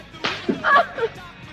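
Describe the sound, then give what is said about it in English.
Tony slaps his girlfriend Marie hard across the face: a single sharp, hard slap cracks out, followed by a few short, higher-pitched vocal sounds that fade quickly into quiet. “The kid claims that the car was unlocked when he found it, and Tony believes him and slaps his girlfriend Marie hard across the face for leaving it that way.”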